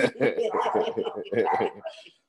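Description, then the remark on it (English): Dogs barking excitedly after the doorbell rings, a loud rapid burst of overlapping barks and yips that runs for about two seconds before trailing off. “Doorbell rang. The dogs are like, hey, ain't nobody coming up in this piece.”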